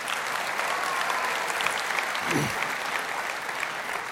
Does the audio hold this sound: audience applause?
yes